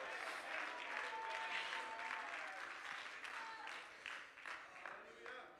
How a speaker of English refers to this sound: Is there anybody in the house thankful for the baptism of the Holy Ghost? If you are, clap your hands and shout amen.